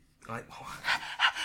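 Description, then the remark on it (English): Someone imitates a dog's panting: a short voiced huff, then quick, breathy, rhythmic pants repeating at a moderate volume, with no other sounds around them. “Can't you just bring your dog person under your control?”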